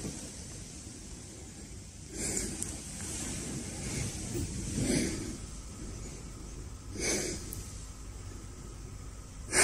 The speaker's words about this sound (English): Is he sniffing around? I smell danger.